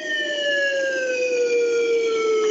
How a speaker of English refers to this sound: There was a guy on set blowing a fucking slide whistle into a microphone, went home that day and was like, Mom, I finally did it.